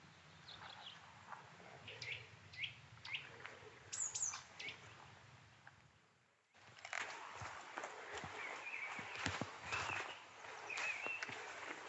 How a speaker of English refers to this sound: They've got so many different calls there. There's that nuthatch again.